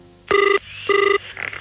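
A telephone rings with a double trilling burst, two short buzzy rings separated by a brief pause, loud, with no one speaking.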